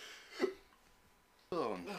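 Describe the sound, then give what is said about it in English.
A single short, sharp hiccup, fairly clear, followed by a brief pause before a man starts talking. “And now I got the hiccups.”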